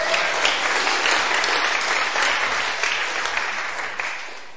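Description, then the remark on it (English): A crowd claps steadily, a dense wash of many hands with no clear rhythm, loud at first and tapering slightly toward the end, welcoming two people coming up to help with a scripture reading. “You can clap hands as they come.”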